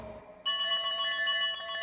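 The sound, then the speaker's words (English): A telephone rings with a bright, trilling electronic bell tone as a call is placed to a fan. It starts abruptly after a brief quiet moment and continues steadily and fairly loud until the end, with no one talking. “Let's do fan phone call.”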